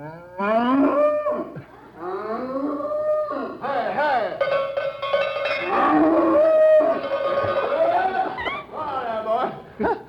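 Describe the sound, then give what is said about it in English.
Cows moo loudly, long drawn-out lowing calls following one another almost without pause, some overlapping, with a brief gap near the start. “All right, come on, you cow.”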